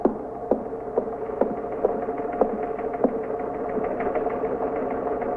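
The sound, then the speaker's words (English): A teletype machine chatters away on its own, a steady mechanical whir broken by sharp, uneven clacks roughly every half second, holding at a constant moderate level throughout. “You want to see what that is on the teletype?”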